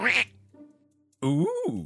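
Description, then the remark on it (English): A person does a loud, nasal imitation of a duck quack: a short burst, a pause, then a longer drawn-out quack with a rising and falling pitch. “That may be the best sound I have ever made. Today's episode, Reductive Reasoning. Heavy on the duck.”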